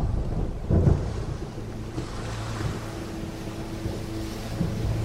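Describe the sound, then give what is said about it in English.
A stormy soundscape of deep, rolling rumbles and blustery wind, with a heavier thunder swell early on before the low roar settles into a steady, brooding background. “One night, a terrible storm settled over the hall, so much so that all the vessels out to sea were under threat of breaking apart.”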